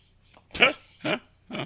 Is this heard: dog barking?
yes